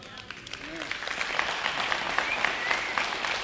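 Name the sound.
audience clapping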